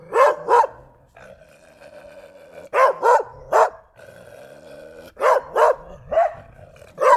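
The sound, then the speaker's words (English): A dog barks in quick pairs and triplets, loud, with short pauses between bursts and a faint steady hum underneath. “Sorry, I had to take something away from my dog again.”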